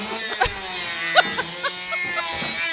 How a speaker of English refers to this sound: Sorry, my man is over here drilling. He's making a... door or something. I don't even know.